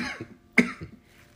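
A harsh cough from smoking bursts out sharply, followed by a couple of smaller, rougher throaty coughs, with no talking around it.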